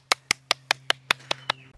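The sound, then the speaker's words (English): Applause made of eight sharp, evenly spaced claps in a steady quick rhythm, moderately loud, over a low steady hum, with no voices; applause welcoming a guest at the start of a chat with an expert. “A big round of applause to...”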